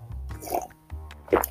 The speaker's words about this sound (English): Excuse me, I had to take my sip of coffee.